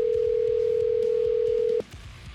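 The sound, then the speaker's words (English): A single steady electronic phone ringing tone, heard over the line while calling Jason Mewes's number, holds loud and even for nearly two seconds, then cuts off abruptly, leaving quiet low background noise. “I don't know if this is his cell phone number or his manager's cell phone number or... We're about to find out.”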